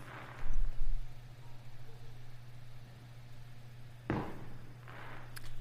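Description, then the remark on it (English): Fireworks are being shot off outside, well before the 4th of July: a muffled low thump early on and then a sharper bang, heard over a constant low electrical hum with no talking. “These Mexicans are shooting off fireworks.”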